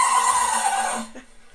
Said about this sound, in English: And basically, it's a Rooks, the Pomeranian, a really cute fluffy puppy, does an epic sneeze. You ready for this?